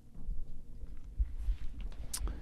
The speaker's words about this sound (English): Are you chewing? Mm-hmm. You have a dip in? Mm-hmm.